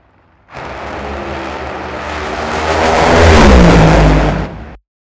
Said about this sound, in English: So those were two funny cars that you just heard, and that was also John Force getting the win over Ron Capps.